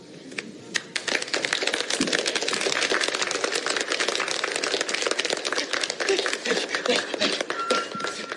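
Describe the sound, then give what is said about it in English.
An audience claps steadily for several seconds, a dense, loud patter of many hands with sharp individual claps standing out, starting abruptly and continuing without letup. “Clapping's a little loud.”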